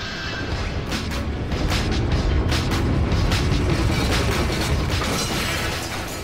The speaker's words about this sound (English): There's a lot of glass being smashed right now. That's actually quite accurate of the show.